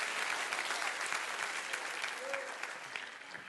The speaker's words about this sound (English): Come on, clap your hands.